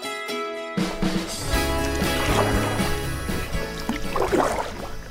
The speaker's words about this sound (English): The sun was already low on the horizon when I set off into the Susquehanna River in my kayak, just southwest of Lancaster, Pennsylvania.